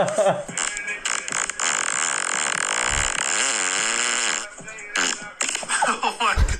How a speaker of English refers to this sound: Anyway, next fart.